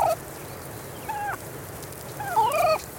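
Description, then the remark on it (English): Wild turkey calls outdoors: a short yelp at the start, a brief call near the middle, then a louder cluster of rising, warbling notes toward the end over steady background hiss. “Turkeys squawk, chirp when they're poults or chicks, and even softly purr to express contentment in a flock.”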